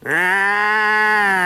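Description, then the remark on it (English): A goat on Dorky Island lets out one loud, drawn-out, nasal bleat, holding steady for over a second with no other sounds around it. “Oh, man's a goat.”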